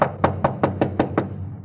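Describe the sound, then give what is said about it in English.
Six quick, evenly spaced, firm knocks on the front door of a house at 1784 Byram Street, in a steady rapid rhythm with no voices. “Front door. Better try it again, huh?”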